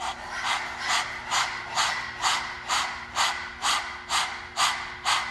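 A person with their tongue out imitates a dog panting as the start of a breath-of-fire breathing exercise: rapid, rhythmic breaths through an open mouth, about two per second, steady with no talking.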